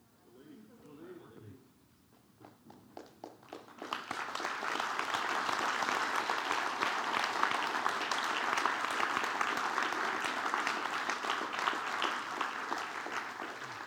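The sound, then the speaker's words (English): An audience bursts into applause: a few scattered claps quickly swell into dense, loud, sustained clapping that carries on steadily, with a brief stretch of voice at the very beginning. “Let's hold our applause for a moment, and I feel like there's still a few people.”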